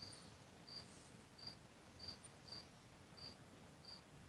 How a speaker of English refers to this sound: No, I actually wanted to just let those crickets go because the crickets were going, and it was great.